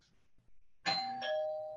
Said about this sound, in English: Someone rang the doorbell.